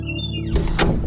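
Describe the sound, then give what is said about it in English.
A back door is opened and pushed shut, with two quick solid knocks less than a second apart over a steady low hum, and no one speaking. Someone heads inside from a small backyard. “I finish another cigarette and then open my back door to head in.”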